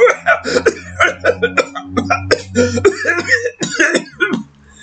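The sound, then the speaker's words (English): A voice acts out a long, exaggerated fake coughing fit, a rapid string of harsh hacking coughs with throaty gasps between them, trailing off into a final wheeze. “not a real cough.”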